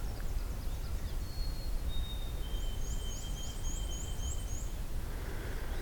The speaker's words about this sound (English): Got more white-throated sparrow, but also black and white warbler here.